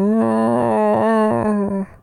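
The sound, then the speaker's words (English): A person vocalizes a long, eerie animal-like groan imitating a sound heard in a forest, a steady droning moan held for about two seconds with a slight waver before it fades. It is loud, with no other sounds. “Very animal noise, but kind of like a groan.”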